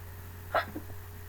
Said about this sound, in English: oh, I'm about to sneeze.